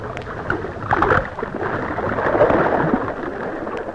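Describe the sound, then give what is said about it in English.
A body-sized splash near the start as a person slips over the side of a rowing boat into the water, followed by steady churning and lapping of disturbed water, with no talking. “Too much splash, I fear.”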